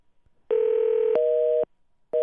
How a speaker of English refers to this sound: Let's try this one more time. Dialing on the air. This is always exciting.